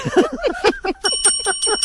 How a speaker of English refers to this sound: That's the lie buzzer, okay?